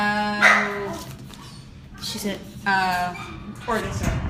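An excited dog barks and yelps in several loud bursts spread across a few seconds, with a steady low background hum underneath.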